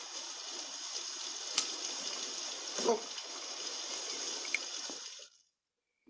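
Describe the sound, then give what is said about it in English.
Steady hiss of water falling like rain inside a store, continuous and fairly loud for about five seconds with a few sharper splashes, then it cuts off into silence. “It's raining inside the store.”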